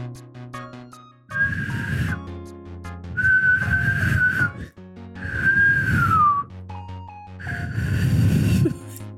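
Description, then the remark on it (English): A person tries to imitate a frog's call by whistling, producing four breathy, airy whistle bursts with a thin wavering tone, one sliding downward, separated by short pauses, fairly loud. “But here's my best recreation of what the whistle probably sounds like.”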